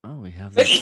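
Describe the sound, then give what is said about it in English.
A person speaks briefly, then a sudden loud, breathy sneeze bursts out, cutting off the talk at the end. “Bless you. Good Lord.”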